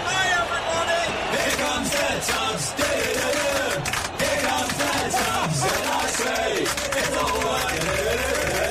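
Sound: football stadium crowd cheering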